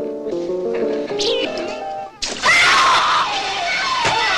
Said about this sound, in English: An unearthly shriek.